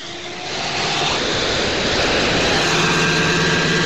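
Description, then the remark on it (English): A 2009 Toyota Camry engine revs up, recorded on a phone, its roar swelling over the first half second and then holding at a steady, loud, rumbling pitch with a harsh, noisy hiss and no voices. “2009 Toyota Camry.”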